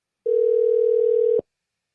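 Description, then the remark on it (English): A steady telephone dial tone, heard while placing a call, hums for just over a second, with a faint click partway through and another click as it abruptly cuts off. No voices. “I'll give her a call on that, see if it works.”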